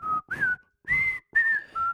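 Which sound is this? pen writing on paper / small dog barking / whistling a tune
whistling a tune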